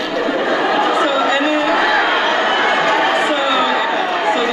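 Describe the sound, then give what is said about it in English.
A large crowd roars in a loud, continuous wash of excited cheering and chatter, many voices blending together steadily for the whole stretch, full. “Why did the crowd get so worked up at they that?”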